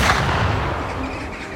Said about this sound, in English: Another gunshot, next to his ear, freezes him to the spot.